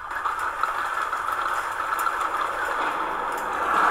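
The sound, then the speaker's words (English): Rain just starting to fall in Oldsmar makes a steady, even hiss with faint scattered ticks on top, swelling slightly louder toward the end. No one speaks. “It just started raining.”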